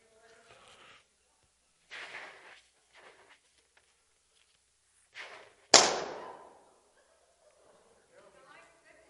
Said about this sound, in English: Did it still scare you? Even though I could tell you that pop, that balloon is going to pop, you saw the process happening, but it still scared you when it happened.